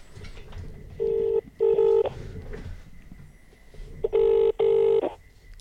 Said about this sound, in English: One more ring and he's on.